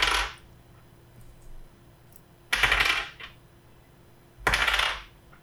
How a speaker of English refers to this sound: I got to roll 3 dice.